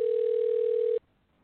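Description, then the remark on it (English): A single steady electronic ringback tone over a phone line, lasting about a second before cutting off abruptly into near silence; no voices. “It says it's ringing, right? Right. I hear it ringing.”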